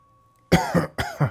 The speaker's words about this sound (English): His face was a sickly pale. He coughed, and specks of red fell onto the floor.